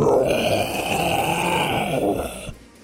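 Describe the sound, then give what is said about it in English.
A person voices a loud, guttural roar back at a snarling creature, holding one rough, growling bellow steadily for about two and a half seconds before it cuts off abruptly. “I just roar right back at it.”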